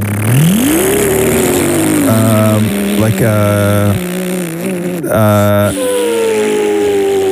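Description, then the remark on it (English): A person makes an engine noise with their mouth, a buzzing drone that rises and falls in pitch across several revving bursts, loud, with no words spoken. “Now you're sort of like making a noise and the mouth noise. That is like an engine of some sorts.”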